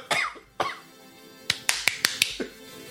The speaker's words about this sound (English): Are we going to clap again? Or do I just start now? I'm confused.